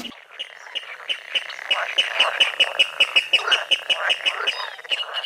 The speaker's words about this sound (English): Tweet of the Week is water rail, taken from the Manx BirdLife Birds of Conservation Concern Red List.